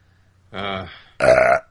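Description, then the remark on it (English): Two loud burps after drinking bourbon, in quick succession, the second louder and more tonal, each a voiced, rumbling belch lasting about half a second with a short pause between. “Fucking bourbon burps.”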